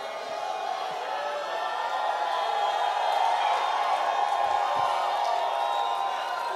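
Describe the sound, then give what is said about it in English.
A crowd of voices shouts and cheers together for victory in a steady, loud roar that holds evenly for several seconds, with scattered whoops rising from the mass of sound. “Say all through 2023, I will be making shouts of victory because I know how to do it.”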